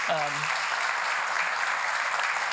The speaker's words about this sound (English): And I first just want to say thank you to you guys as a church, but also more specifically to all the volunteers that came out to help make it happen. And so I would just invite you guys to give them a round of applause.